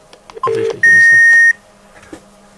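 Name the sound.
phone call ringing tone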